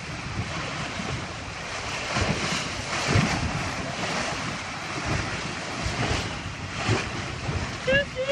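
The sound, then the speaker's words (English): A boat runs through choppy water in steady wind, with constant rushing spray, irregular slaps and surges of waves against the hull, and gusts buffeting the microphone. “A few waves here and then a nice pop.”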